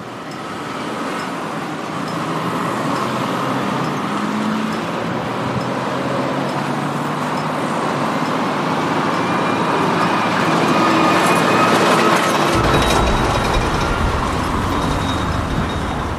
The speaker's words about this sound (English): so unbelievable sounds in the middle of a roundabout. Let's hear more about it.